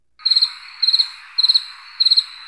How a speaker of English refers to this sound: We'll put crickets in. Yeah, that's the appropriate place to use that. Yes, I've been looking for a place to put crickets.